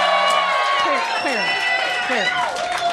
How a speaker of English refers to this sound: Yeah. Rosie Perez. Clap for Rosie Perez.